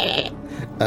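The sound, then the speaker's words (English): A voice imitates a rough, guttural bleat, something between a goat and a demonic growl, in two close, raspy bursts with a brief gap between them and no other sound. “less like a goat, more like a demon. But possibly somewhere between those two.”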